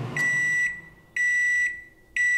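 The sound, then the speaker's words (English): A microwave oven beeping: three steady, high-pitched electronic tones, each about half a second long, repeating at a regular one-second rhythm with no talking. “I told you not to put metal in the science oven.”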